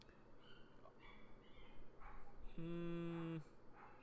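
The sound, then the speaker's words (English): Dogs barking, a few scattered short barks followed by a longer, drawn-out howling bark, faint against a low background rumble with no one talking. “How long do you think the dogs are gonna be barking for?”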